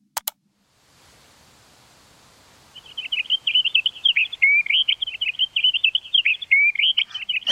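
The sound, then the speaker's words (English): A songbird sings a continuous, rapid warbling song, clear, over a soft, steady hiss of wind blowing through green summer leaves, after a couple of brief clicks at the start. “There would probably also be some noise of the wind blowing through some green summer leaves or some insects that are chirping in the background.”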